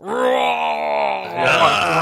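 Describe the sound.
Voices imitate a roar, a loud, sustained, groaning bellow held for about two seconds that turns rougher and breathier toward the end.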